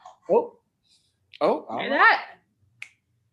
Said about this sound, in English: Watch. She's going to bark at me. Let's hear.